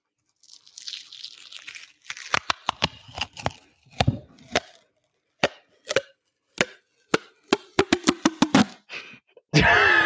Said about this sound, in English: Let's tear off a piece of this duct tape.